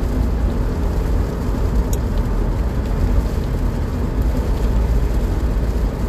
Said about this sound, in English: And I don't know if you guys can hear the rain, but it is pouring. And the thing is, it was really coming down harder earlier, and it completely stopped, so I was like, alright, let me get out of the house now.